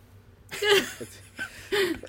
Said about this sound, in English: I just had a sneeze.